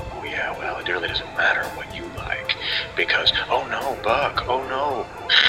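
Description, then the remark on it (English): Crackling radio static hisses steadily with a regular ticking of clicks, while muffled, garbled voices come through underneath like a poorly tuned transmission. “Getting some static.”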